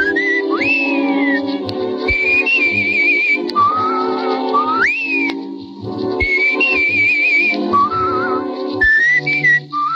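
A man whistles a bright, melodic tune up close and loud, rising and gliding between notes over a steady instrumental accompaniment that plays throughout.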